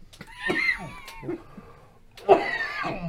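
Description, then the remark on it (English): A coughing fit: a cluster of rough, raspy coughs, a brief pause with a weaker hack, then another loud burst of strained, throaty coughing. “I think we need a cough button.”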